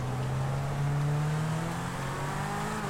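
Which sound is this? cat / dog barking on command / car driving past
car driving past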